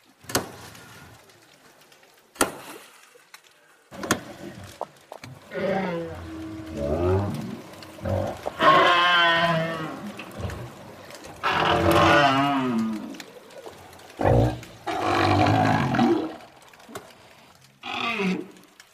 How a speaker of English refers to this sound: But I can share with you some amazing recordings of southern right whales.